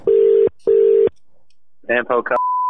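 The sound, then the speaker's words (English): Two long, buzzy telephone tones sound in a row as a prank call is placed, followed by a brief burst of voice and then a steady, clear high-pitched phone tone cutting in at the end. “Picking up your phone was your first mistake.”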